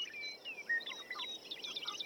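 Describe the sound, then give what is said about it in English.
Birdsong fills the air, a busy overlapping chorus of thin, high whistles and quick chirps that keeps up throughout, heard softly with no voices present. “That birdsong, more than any other sonic element of nature, appears in our classical music, appears through the ages, that birdsong is music to our ears.”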